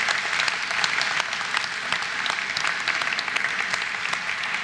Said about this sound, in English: I think we should applaud these guys as well.